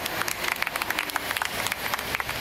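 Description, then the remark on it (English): A crowd in New Malden greets the Nothing to Do With Anything roadshow with a steady patter of clapping, many hands overlapping into a dense, crackling wash that holds at an even level for a couple of seconds, with no distinct voices standing out. “What a rousing reception.”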